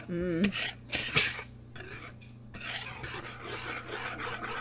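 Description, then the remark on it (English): Someone whisks briskly in a bowl, a steady scraping and clinking of metal against the sides that keeps going, with a brief burst of a voice at the start. “That sound that you might hear is just me giving a little extra whisk.”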